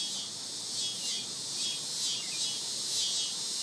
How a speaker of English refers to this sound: The cicada song is not at all subtle. It's raspy, even rude.